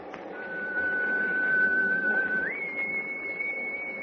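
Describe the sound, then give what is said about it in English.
A steady, piercing whistle blows continuously in thick fog, then abruptly jumps to a higher pitch partway through and holds there, over a constant low rumbling background. “Gosh, that whistle is...”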